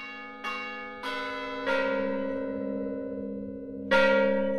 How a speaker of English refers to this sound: For the song of Ascension's death, Joseph Weil and Boone made the first recording of the bells of Mission San Juan Bautista and arranged them for a chorus.